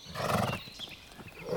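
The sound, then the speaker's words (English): A horse rears as a pig runs across its path, throwing its rider. It lets out a loud, shrill neigh, followed by a shorter, quieter whinny a moment later, with faint hoof-like scuffing in between and no talking. “The horse reared and threw Louis's brother to his death.”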